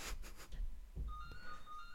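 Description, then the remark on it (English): A mobile phone ringtone begins partway through, a faint, steady electronic tone with bright higher overtones over low background rumble and a few soft knocks. “Oh, my phone is going.”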